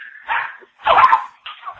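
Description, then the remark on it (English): A small Yorkie yaps three times in quick succession, high-pitched, the middle bark loudest and longest, with no voices around it. “There's his dog.”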